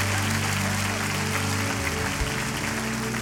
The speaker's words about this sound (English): We can be a people who clap our hands. We can be a people of faith. Come on, if you believe in this morning, put your hands together in this place.